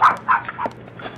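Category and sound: animal, small dog barking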